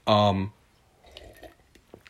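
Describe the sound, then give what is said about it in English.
A short voiced sound gives way to soft, wet sipping: small slurps and mouth clicks of water being drunk, quiet and irregular over about a second. “Just took a sip of water there.”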